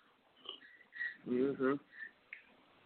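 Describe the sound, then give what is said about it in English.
A few short, airy slurps of someone sipping hot ginger tea, broken by a pair of voiced, humming 'mm' sounds of enjoyment in the middle, all fairly soft. “Let me sit here and get a real quick sip of my fabulous ginger tea that I'm sipping on.”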